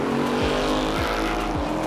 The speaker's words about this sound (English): Yeah, that Mustang. Arguably the most definitive American sports car of all time.